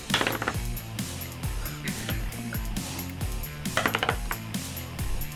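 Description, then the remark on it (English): Dice clatter and skitter across a tabletop in several quick bursts as they are rolled, over a steady low tonal background with no voices. “God rolling damn! Dice. Fuck this die.”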